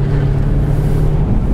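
A Jaguar car with an automatic gearbox drives steadily along the road, its engine a smooth, continuous low hum with a faint tonal drone, fairly loud throughout, with no voices.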